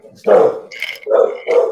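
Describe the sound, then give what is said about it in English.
A dog barks three times in quick succession, loud, with a brief higher-pitched yelp or whine between the first and second barks, as it keeps running back and forth to the garage. “Keeps running back and forth to the garage.”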